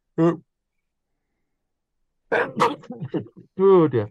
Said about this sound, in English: So I'm going to sneeze. I've got a bit of a cold. Excuse me. One sec.